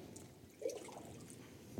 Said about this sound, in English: I'm going to get some more water because this jar is small.